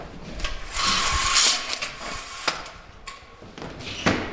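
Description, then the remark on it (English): A man locks a door with keys after a final walkthrough as he moves out of his home in California: a stretch of scraping and jingling metal, then a few sharp clicks and rattles of the lock, moderately loud with no talking. “He locks the door and puts his keys through the mail slot.”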